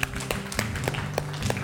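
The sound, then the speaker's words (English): Sparse hand claps during a sermon as people give themselves a round of applause, about five sharp slaps spaced fairly evenly over under two seconds, more like a thin scattering of clapping than full applause, over a steady low hum. “So now that you've gotten the nerve to ask God to speak, everybody give yourself a round of applause.”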